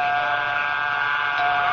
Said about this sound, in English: I don't think there's anybody here. Let's ring the bell.